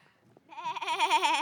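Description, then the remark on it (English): A person imitates a sheep for scene one of a play with a wavering, nasal bleat that starts abruptly and holds for about a second, loud, after a brief quiet moment. “Scene one had a sheep.”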